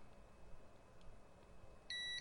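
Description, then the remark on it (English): A digital multimeter's continuity beep: one steady electronic tone that sounds abruptly near the end and holds for a few tenths of a second, over a faint background hum. “It bounces all over the place and then decides it wants to beep.”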